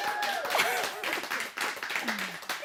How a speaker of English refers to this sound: I didn't clap on point, but it's okay.